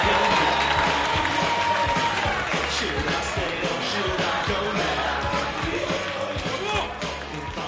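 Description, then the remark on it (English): A crowd claps and cheers loudly and continuously as a performer is welcomed to the stage, dense rapid clapping blended with shouts and excited voices, holding steady for the whole stretch. “Clap your hands. Woo! Cheer!”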